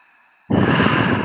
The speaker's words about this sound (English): Now breathe deep again. Beautiful. You'll start to feel better. Now just keep going like that in your own timing and rhythm. And I'm going to talk to you as you're breathing in deeply.